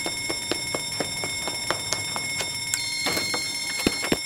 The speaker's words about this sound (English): One false smoke alarm coming up. Everyone get ready. Once we hear the alarm sound, we'll run out the emergency exit doors together.